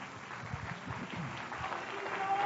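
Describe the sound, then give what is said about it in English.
An audience claps their hands for the Lord in an auditorium, a dense steady wash of applause with a faint murmur of voices underneath. “You may be seated, and would you clap your hands for the Lord?”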